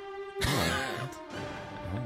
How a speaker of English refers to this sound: I'm yawning so much. I'm not tired or bored.